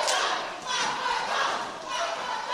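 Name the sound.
wrestling crowd cheering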